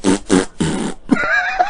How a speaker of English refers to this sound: I actually should do that. Here it is. Here's my fart sympathy part one.